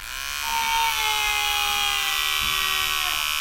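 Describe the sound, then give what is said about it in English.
Electric clippers buzz steadily, a loud, continuous motor drone with a rough, harmonic-rich tone that swells up in the first half-second and then holds even without pause. “Let me get me clippers.”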